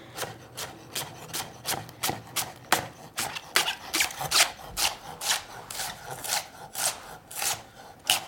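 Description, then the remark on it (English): A knife thinly slices leeks, already cut in half lengthwise, into half moons on a cutting board in a steady, quick rhythm of about twenty crisp, scratchy strokes, each ending in a light tap on the wood. No one speaks. “All right, so I'm gonna take my leeks and I'm just gonna slice them thinly into little half moons, since I've already cut them in half lengthwise.”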